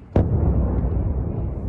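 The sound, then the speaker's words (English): A single loud Russian missile strike explosion in Kyiv, Ukraine, bursts suddenly, then gives way to a heavy, low rumble that keeps rolling and churning for over a second, with no voices. “69 Russian missiles were aimed at Kyiv today.”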